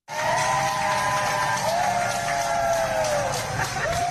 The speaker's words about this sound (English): staff at a Florida kennel in West Palm in Florida were cheering in front of empty dog cages because all the dogs were adopted. This is the first time in the kennel's history. So this is what it sounded like when all the volunteer staff were cheering.